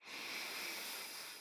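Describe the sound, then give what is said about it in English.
A deep, airy inhale drawn steadily through the mouth for about a second and a half during a guided breathing exercise, soft, with no talking. “And as you think of that one thing, we're going to take a deep breath in and out. So let's breathe in together.”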